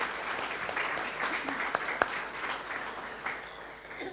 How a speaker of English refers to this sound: Let's give them a clap. Yay.